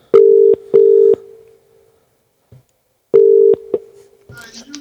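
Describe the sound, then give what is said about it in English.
A telephone ringing tone on an outgoing call placed live from a radio show: a steady buzzing double ring, pause, then a second double ring cut short, followed by a faint voice picking up at the end. “Oh, ringing, that's always a bonus.”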